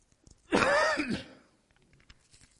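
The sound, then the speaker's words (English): A single harsh, raspy throat-clearing cough from a speaker trying to teach, lasting under a second with a gravelly rattle before trailing off into quiet background noise. “That the Lord will help me keep this coughing down.”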